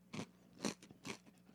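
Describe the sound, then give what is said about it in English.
Someone bites and chews a leftover Taco Bell burrito: three crisp, crunchy bursts spaced about half a second apart, with softer chewing crackles between them. No one talks. “Is it that I'm going to finish this Taco Bell burrito?”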